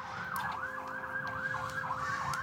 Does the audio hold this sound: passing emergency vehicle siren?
yes